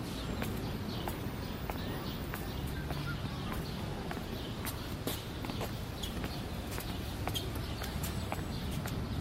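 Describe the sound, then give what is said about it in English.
A guide's footsteps on an audio sound walk, a run of sharp, slightly irregular steps tapping along over a constant dull background rumble, with no one speaking. “Try to walk to the sound of my footsteps so that we can stay together.”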